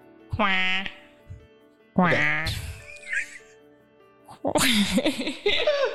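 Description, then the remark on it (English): A person imitates a duck with two short, nasal quacks about a second and a half apart, fairly loud, followed by a burst of breathy, noisy vocal sounds. “just like I can't do impressions, but I can do duck impressions.”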